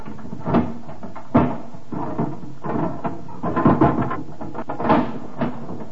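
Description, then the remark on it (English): A locked cupboard is forced open with a pinch bar: an uneven series of wooden knocks, creaks and rattling strains, with several sharper bangs spaced over about six seconds and no voices. “It's locked. Open it. There a pinch bar? Here on the wall.”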